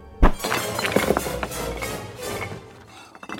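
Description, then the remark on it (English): A heavy stone statue of a god is knocked down and topples with a deep, booming thud, followed by a couple of seconds of scattered cracks and clattering debris that gradually settle into quiet. “If I've just brought down a stone god, just what trouble is Roy Steele in?”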